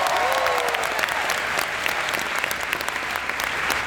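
A large crowd at Urbana 22 applauds and cheers steadily after being led by the Lights Out Urbana worship team at their first worship session together in 4 years, dense clapping forming a loud, continuous wash of sound, with a brief rising whoop near the start and no clear speech.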